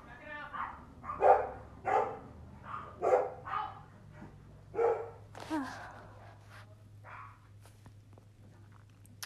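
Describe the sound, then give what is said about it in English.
A dog barks repeatedly in short, uneven bursts, moderately loud, with a few quieter yips trailing off toward the end over a low steady hum. “Sorry, you can hear the dog, probably.”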